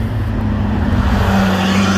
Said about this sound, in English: Wow, that's some noise. Some boy racer out in his wide-ass car on these narrow little Japanese roads.